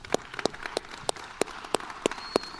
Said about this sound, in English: Let's stand. Let's give God a hand clap tonight.